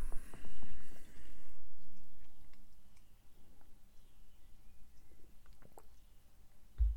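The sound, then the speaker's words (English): Someone takes a quick sip of a drink, followed by soft mouth clicks and small swallowing noises over a quiet background. Nobody speaks. “Right, so have a quick sip before we start talking about management.”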